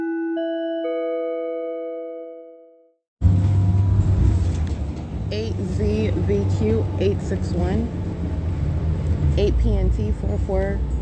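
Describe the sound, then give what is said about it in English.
A short stepped electronic chime rings, then the steady low rumble of a moving bus interior takes over, with indistinct voices talking over the engine noise. “That is a demon that is driving this bus.”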